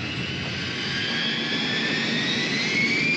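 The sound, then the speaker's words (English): A loud, steady roar of jet aircraft engines running continuously, with a high whining tone that slowly rises in pitch over the broad rumble. No voices are heard. “Stop all engines and get out.”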